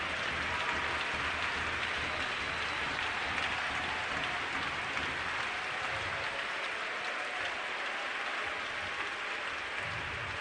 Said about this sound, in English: His name is. His name is. Clap your hands unto that name.